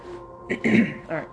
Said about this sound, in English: I had a bug crawl in my throat, apparently. I don't know why I can't seem to clear my throat enough to get whatever this is past. So if you hear me clear my throat, my sincerest apologies.